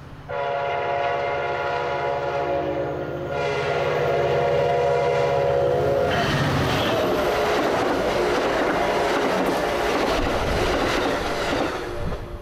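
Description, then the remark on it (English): A train at a station platform in Albuquerque, New Mexico, on a beautiful day sounds a loud, sustained horn for several seconds over a low engine drone, then a broad, steady rumbling wash of train noise takes over, with no talking. “I'm on the platform in Albuquerque. First time I've been off the train since we left Los Angeles.”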